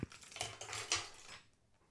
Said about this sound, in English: Again, with the fucking keyboard keys. It's a fucking computer. That's not how they sound.